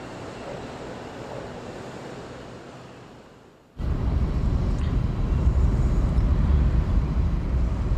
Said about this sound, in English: Well, we're on the bullet train, we're moving, heading towards Kyoto